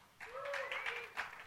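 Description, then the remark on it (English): A church audience breaks into applause, a dense wash of many hands clapping that rises quickly and holds steady, with a sustained vocal whoop or cheer riding over it. “It's like, oh, we got to clap twice in a row.”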